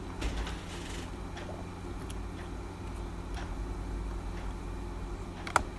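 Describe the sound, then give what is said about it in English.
Two quick, sharp computer mouse clicks, clicking on the December 2021 cover, land near the end, crisp, after several seconds of steady low hum with faint scattered ticks. “All right, I'm bravely clicking on the cover.”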